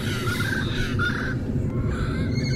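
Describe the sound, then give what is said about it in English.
Harsh, raucous calls of red-crowned parrots repeat in quick succession over a steady outdoor background rumble, with no talking. The parrots are an introduced population in Irvine, California, in Southern California. “here with an audio postcard with our very cool red-crowned parrots.”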